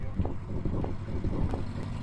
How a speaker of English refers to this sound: It's my mic's wobbling about.